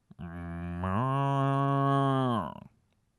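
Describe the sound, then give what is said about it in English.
A single long, loud moo, rising in pitch partway through, then holding steady before cutting off. It is a person's voice imitating a cow, in a studio in Chicago. “Oh, was that a good cow sound? That was great. That was a cow.”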